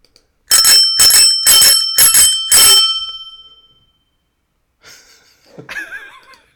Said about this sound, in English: It does sound a little bit different. It's a little bit different. It sounds kind of like a bike bell. It sounds a little old-timey to me.